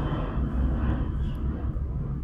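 A loud airplane passes overhead, a steady, deep rumbling roar that fills the whole stretch without fading, heard alone with no one talking.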